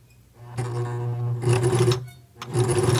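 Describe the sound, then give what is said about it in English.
A sewing machine runs in quick bursts, its needle stitching with a steady mechanical whir and rapid clatter, pausing briefly between runs. Fairly loud, with no talking. “My parents got me a sewing machine for my birthday during quarantine, and I honestly love taking time to make something just for me.”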